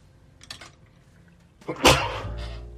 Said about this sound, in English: I think I'm gonna sneeze.